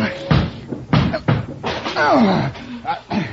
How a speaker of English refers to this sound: I'm going to break this door down. Oh, it's pretty solid.